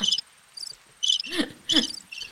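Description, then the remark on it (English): Crickets chirp in short, high, regular bursts roughly every half second, a steady trilling pulse that stands alone without voices, with a couple of softer rustling sounds mixed in. “Crickets. That's by far my favourite sound.”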